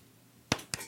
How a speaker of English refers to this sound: That wasn't intended to be a golf clap. That was a great golf clap. Yes, it was.